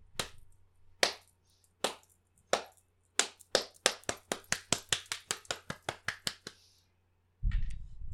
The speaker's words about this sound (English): Wow. How? It was a slow clap.